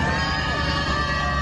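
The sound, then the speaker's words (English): A crowd of spectators at a courthouse booing and shouting at Amber as she arrives, in a dense, continuous roar, many voices blending into steady, fairly loud noise with no pauses. “As usual, Amber is greeted with boos and worse.”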